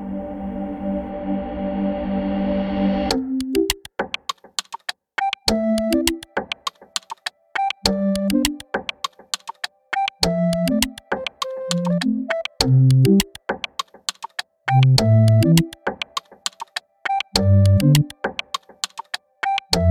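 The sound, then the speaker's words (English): After a brief steady hum, sharp computer-keyboard clicks tap out a rhythmic, almost musical pattern with pitched tones, fairly loud, with no one talking; a bank's new ringtone made up of the sounds of its computer keyboards. “the new ringtone of the bank, which is made up of the keyboards of the computers, the fluorescent tubes of the ceiling, and the cars going by.”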